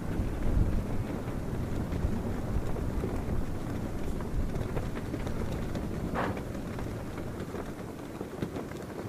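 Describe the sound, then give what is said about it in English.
Strong, gusty wind roars steadily, with colorful prayer flags snapping and fluttering in quick irregular bursts, flapping hard in a gale. “They were always furiously flapping in the wind.”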